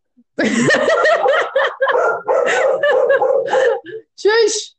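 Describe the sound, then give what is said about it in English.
Dogs bark loudly in a rapid, overlapping string of yaps with a few short pauses, ending in one last sharp bark. “They're probably barking at like some random person walking down the street.”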